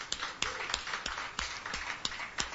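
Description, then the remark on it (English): Audience applause at the Sunday-night YEG Live Songwriter Stage at the Hideaway, given for the Jekyll and Hyde Pub: a dense, steady patter of many hands clapping, with a few louder claps landing in an even rhythm on top, at moderate volume and with no voices. “So let's hear a round of applause for that, first of all.”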